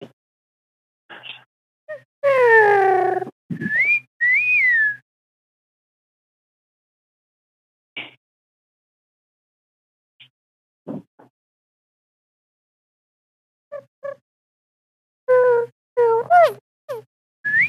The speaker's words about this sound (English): Sorry about that. I put my phone next to my bird cage. Okay. Really? Yes. You heard my parakeet, didn't you?